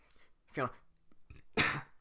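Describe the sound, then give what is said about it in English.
A throaty cough-burp from air swallowed while doing a Shrek voice: first a low, voiced gulping burst, then after a brief pause a harsher, louder cough that forces out the swallowed air, with no talking around them. “I swallow a bunch of air when I'm doing the Shrek voice, and I, like, kind of cough burp it out.”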